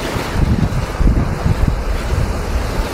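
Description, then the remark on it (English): Stormy wind roars steadily while heavy sea waves crash and surge, a loud, continuous rumbling wash with no voices. “The moos could be heard, the creaks of wood, whoosh of the wind.”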